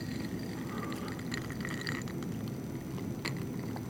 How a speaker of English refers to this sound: Sorry. Had to take a drink of water.